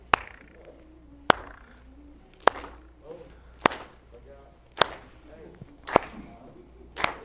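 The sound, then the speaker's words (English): An audience claps along to a rhythm: crisp, sharp claps land in a steady, even beat, about one per second, seven in all, with faint voices murmuring between them. “But if you are, feel free to clap. And here's the rhythm I need you to clap to, okay?”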